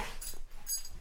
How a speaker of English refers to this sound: The dogs are scuffling.